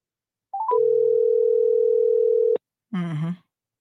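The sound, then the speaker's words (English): A few quick electronic chirps give way to a steady, unbroken phone dial tone lasting about two seconds, then it cuts off and a brief voice is heard; a phone call to a woman that goes unanswered. “So literally, folks, I have called her on 4 different numbers this morning, and she not answered none of them.”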